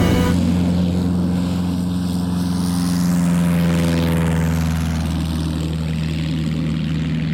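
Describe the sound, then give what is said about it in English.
A small propeller plane drones steadily overhead, its buzzing engine tone loud and continuous, swelling and shifting in pitch as it passes by, with no voices present. “A small plane passed overhead.”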